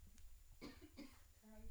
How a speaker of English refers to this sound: Mom's having a coughing attack, so I'll talk about random things right now.